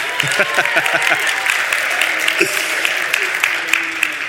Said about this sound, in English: The Corian house group, you cannot get them to stop clapping. They're the ones clapping right now, just in case you didn't know.